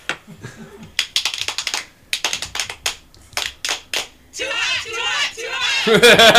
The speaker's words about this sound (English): Nice. Messy clapping. So it was great. I'm just imagining barbecue sauce flying everywhere.